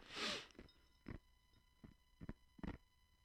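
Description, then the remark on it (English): Crisp crunching of ice being chewed: one loud bite, then five or so smaller crunches at uneven intervals over a faint steady hum, with no talking. “We're crunching ice, dude.”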